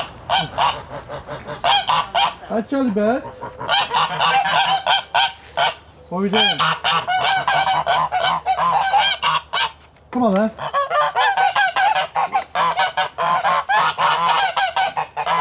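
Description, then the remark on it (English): A flock of farm geese honks loudly and continuously, overlapping harsh calls filling the scene, while a person speaks briefly to the birds, including a hand-reared goose named Charlie. “And I know over to my right, I can also hear geese gently clucking, but if I go over there now, they'll make a lot of noise.”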